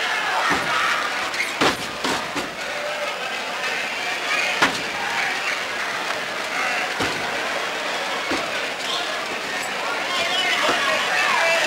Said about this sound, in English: Berger again slammed down to the canvas.